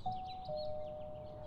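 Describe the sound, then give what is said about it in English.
A two-note doorbell chime rung at the front door of a faded blue rambler house, a higher tone followed by a slightly lower one that rings on and fades, with birds chirping faintly in the background outdoors. “He slowly pushes the gate open, then walks up to the front door and rings the bell.”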